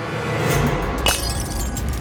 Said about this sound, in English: The glass shattered against the creature's big, furry head. Glittering green shards fell to the cobblestones.